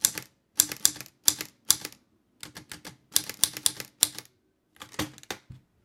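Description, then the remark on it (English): Crisp clacking of the keys of an Italian-made 1963 Olivetti Lettera 22 manual typewriter, struck in quick bursts with short pauses between and the space bar hit, ending in a heavier clunk as the carriage is returned and drops down a line. No voices. “That is punching some keys, hitting the space, and then the knob that takes it back over to the next, takes it back over to the beginning, and then drops it down a line.”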